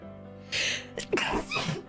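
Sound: sneeze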